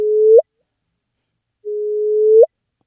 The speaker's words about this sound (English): So that is the sound of two black holes colliding.